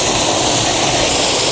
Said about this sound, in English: So I'm just going to point it straight at the waterfall. Well, I'm going to point it down towards the water a little bit, and I'm just going to count to 30.